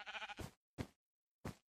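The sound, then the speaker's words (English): A sheep in a video game bleats with a wavering, harmonic baa as the player gathers wool from it, followed by two short, sharp clipped sounds spaced apart, all clear with silence between them. “I mean, except for the sheep. They're going to freeze to death now, but that's beside the point.”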